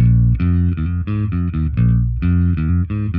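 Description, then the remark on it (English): An electric bass guitar, played clean without distortion or compressor, plays a steady, punchy riff of repeated low notes with short gaps between them, loud, with no other instruments or voices. “Without the dark, without the distortion in there, without the compressor as well, let's remind ourselves.”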